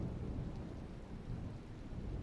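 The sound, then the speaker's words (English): A thunderstorm rumbles steadily, with low rolling thunder beneath a constant wash of rain. The sound is dense and sustained, with no voices. “again, and I point towards the storm, that's going to be bad.”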